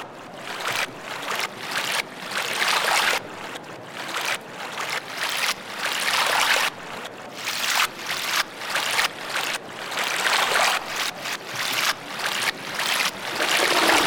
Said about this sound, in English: We create a solution of water and perfectly harmless asbestos, and then using a system of hydraulic pumps and pressure valves, we're able to create music in the car.